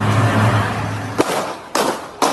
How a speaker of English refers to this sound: Cell phone video shows the gunman opening fire. Several shots are heard before the camera pulls away.